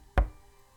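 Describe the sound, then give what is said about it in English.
A single loud, heavy knock of a woman banging on a door, with a deep thud, followed by near silence. No voices are present. “I didn't say anything further, but she kept banging and banging on the door until I relented and answered.”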